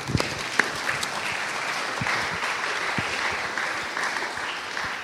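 Sustained applause from an audience, a dense wash of many hands clapping at steady volume for several seconds, with a few sharper claps standing out near the start.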